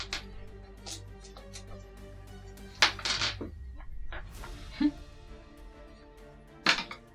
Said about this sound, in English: 4-foot by 8-foot table and I still can't keep the dice on it.